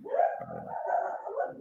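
A dog barks and yowls in one drawn-out, wavering outburst lasting under two seconds, fairly loud, with no talking over it.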